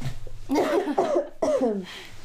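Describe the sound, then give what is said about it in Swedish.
Two loud coughs, each a harsh burst trailing into a raspy rumble, separated by a brief pause, with quiet background between them. “Det var stor hosta.”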